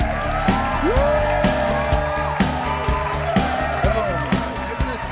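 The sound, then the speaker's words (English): A large crowd at a live Rated G Radio show from Hollywood cheers wildly and steadily for about five seconds, with high rising whoops and scattered shouts cutting through a dense, loud roar of voices. “The crowds are just going wild tonight over the show.”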